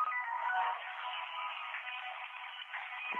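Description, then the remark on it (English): A mobile phone rings with a tinny, steady ringtone melody that plays continuously for a few seconds, clear, with no one talking over it. “then I just have to turn my phone off.”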